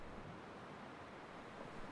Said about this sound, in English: Outside, the sounds of wind and rain.